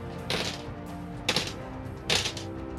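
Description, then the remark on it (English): Three sharp clattering bursts of dice rolled for attacks in a tabletop game, tumbling on a hard surface, spaced about a second apart, moderately loud over a faint steady background hum. “I do like the ASMR of dice.”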